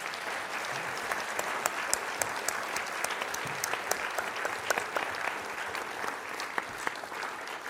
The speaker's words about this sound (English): So you have been very patient. I hope, why don't you give these lovely scientists a round of applause.